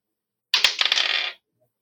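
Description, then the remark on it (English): Dice clatter and tumble across a hard tabletop for under a second, a quick burst of bright, sharp clicks that rattle to a stop, fairly loud with no voices. The die is rolled for an intimidation check. “Yeah, I keep rolling this one because it's cursed.”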